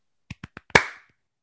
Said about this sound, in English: And for that reason, golf clap, everybody.